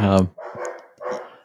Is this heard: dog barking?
yes